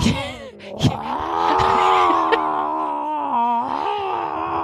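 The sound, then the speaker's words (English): A person imitates the drawn-out, high-pitched scream of a cat whose claw was stuck, one long wailing yowl held for several seconds with a wavering pitch, loud. “And she was like screaming, like not like meowing, like a short meow. It was like an elongated, like high pitch.”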